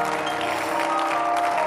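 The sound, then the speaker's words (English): Many hands clapping in a dense, continuous wash of applause that holds an even loudness throughout, with a steady sustained tone humming underneath. “I hear somebody clapping your hands.”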